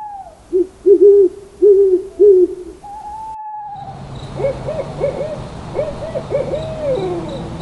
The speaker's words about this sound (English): Owls, yes.